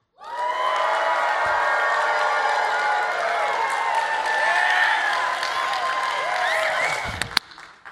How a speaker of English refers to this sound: Merry Christmas. Shouts of joy.